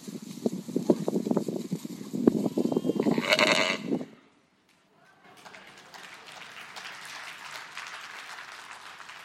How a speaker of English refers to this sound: Isn't that amazing? Now, you know, the video's not the greatest. There's a bit of wind noise, but how powerful when those sheep start to come out of the fog toward the shepherd.